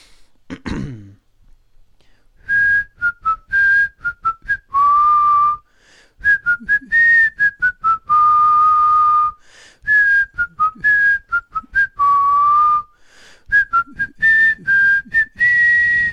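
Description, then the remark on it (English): A person whistles a bright, recognizable TV theme tune in repeated phrases with short pauses, preceded by a brief throat clearing and breathy sounds. “send the answer through to Collective Noun's Facebook page messages, as well as what you'd like to hear me whistle next episode”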